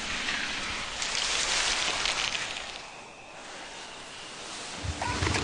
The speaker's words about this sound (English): you hear the details of ironing. There's clicking, there's the steam sound, the whoosh, the breathing of the steam, and the spray starch. And then when the starch lands on the fabric, that's another nice sound. It's like rain.